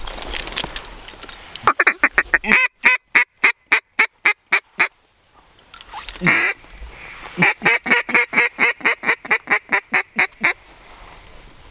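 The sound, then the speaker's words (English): Ducks quack loudly in two rapid, rhythmic runs of many harsh calls, separated by a brief pause with a rising squawk, with no talking. “oh, there's some ducks right there.”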